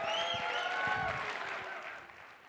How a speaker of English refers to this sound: Can you give a hand clap for Dr. Leibengood's message yesterday?